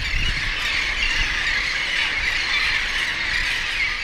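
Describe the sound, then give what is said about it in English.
A dense, continuous din of squealing and squawking seabirds, thousands of royal terns, laughing gulls and others calling at once in a loud, unbroken wash of sound with no talking, at a nesting colony on the island of historic Fort Wool beside the Hampton Roads Bridge Tunnel. “These are royal terns, laughing gulls, and others.”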